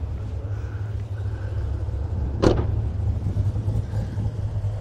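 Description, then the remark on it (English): A car engine idles steadily with a deep, even rumble, broken once midway by a brief sharp click or clunk, with no one speaking. “Yeah, we got it rolling. If the car's healthy.”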